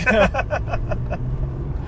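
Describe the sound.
Steady low road rumble fills the cabin of a moving BMW M3, constant and fairly loud, with a person's voice briefly speaking over it in the first second before the drone continues alone.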